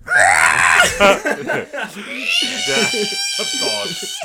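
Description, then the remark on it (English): A person vocally mimics the droid R2 from a movie screaming, frantic electronic high warbling squeals and chirps rising over a few seconds, loud, mixed with some laughing. “You missed a bit where R2 comes in, screaming.”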